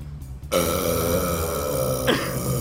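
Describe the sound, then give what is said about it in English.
A man's long, loud, deep burp rumbles on for about two seconds, with a brief rise in pitch near the end before it trails off. No talking is heard. “This guy's a celebrity for burping.”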